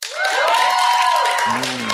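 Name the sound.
audience cheering and clapping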